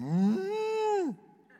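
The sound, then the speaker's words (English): A single long cow moo, fairly loud, rising at the start, holding steady, then dropping off after about a second, followed by faint background noise. “The last commentary on Jonah's mission and his ministry is cows.”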